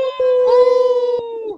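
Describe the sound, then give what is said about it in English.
A person imitates a wolf howl with one loud, sustained "woo" that holds a steady pitch and then slides downward at the end, with no other sounds. “Hey, Mom's lone wolf and woo!”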